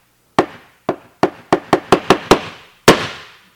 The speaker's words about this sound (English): They have a big piece of wood, big thick piece of wood, like that thick and about this big, and they bang on it, right? They bang. And then the banging, and slowly over time, the banging gets a little faster.